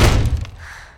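A heavy thud as someone throws their weight against a back storm door, with a short rattling resonance that fades out over about a second.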